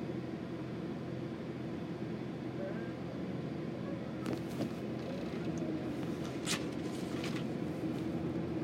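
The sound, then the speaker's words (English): A steady, low engine and road rumble fills the cabin of a moving car, constant throughout, with a few faint ticks and rustles in the second half. “But I'm in the car right now, so.”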